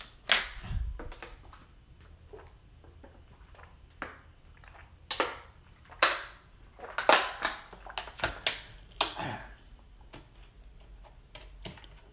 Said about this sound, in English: Hold on. Let me get a swig of water real quick.